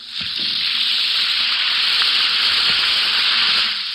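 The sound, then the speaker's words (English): An Alka-Seltzer tablet fizzes steadily in water, a bright, continuous hiss with faint crackling pops that holds at even loudness for several seconds, with no voices. “Listen to it fizz.”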